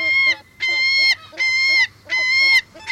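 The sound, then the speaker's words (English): Herring gull calls ring out in a loud series of about four harsh, nasal squawks, each lasting roughly half a second with short gaps between them, and no talking. “Ah, the sweet music of gulls.”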